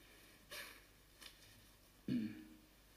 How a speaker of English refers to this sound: So you can see actually that, excuse me, I just blow my nose.